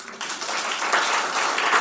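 A church audience applauds steadily, a dense wash of many hands clapping together at a fairly loud, even level throughout with no voices standing out.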